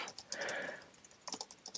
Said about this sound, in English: Typing it out right now. This is live.